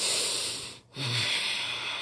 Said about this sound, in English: Sweetie, my breathing changing. I'm groaning too.